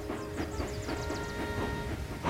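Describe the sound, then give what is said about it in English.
A railway engine from the Schoenaer Valley Railway pulling in, a steady rhythmic chugging with a sustained high metallic squeal running over it, even in loudness, with no voices. “Aha, that sounds like her now.”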